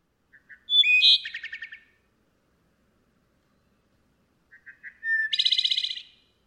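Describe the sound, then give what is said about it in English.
Two clear phrases of wood thrush song, each opening with a few soft low notes before a bright, fluty warble that breaks into a quick ringing trill, with a silent pause between them. “it would definitely be the wood thrush. That melodic flute, it just like I can close my eyes and listen to that song and it will transport me to like some magical place.”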